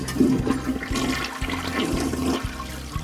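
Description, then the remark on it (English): A toilet flushes with a loud rushing whoosh of water that churns steadily for a few seconds, with no voices over it. “To my mind, it's like the whoosh of the toilet as you flush almost serves as a mind eraser.”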